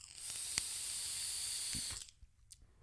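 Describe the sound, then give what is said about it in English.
A steady, airy hiss of someone vaping with mango holds for about two seconds, broken by a couple of small clicks, then cuts off into quiet with a faint tick afterward. “Now, let's try to vape this with some mango.”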